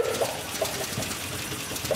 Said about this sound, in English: The engine sputters and roars to life.